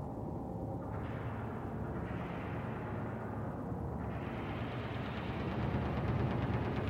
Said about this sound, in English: Ominous rumbling noise. Ooh, I love a good ominous drone. Also, it sounds like Centipede or something.